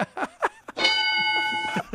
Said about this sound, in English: He rang the bell himself.